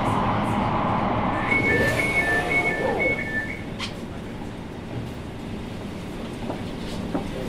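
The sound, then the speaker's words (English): An Elizabeth Line commuter train to Paddington runs underground in London from Liverpool Street toward Farringdon, rumbling steadily along the rails, a dense roar with a brief high-pitched squeal of wheels rising over it early on before the noise eases slightly. “This is the train to Paddington.”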